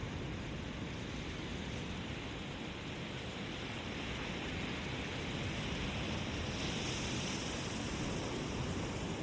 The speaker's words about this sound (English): So take a few deep breaths, enjoy the sound of the ocean,